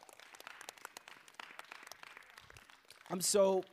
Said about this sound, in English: First off, give a shout out, give a round of applause to all of these amazing youth leaders. Come on.